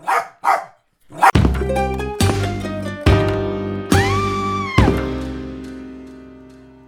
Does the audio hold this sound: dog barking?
yes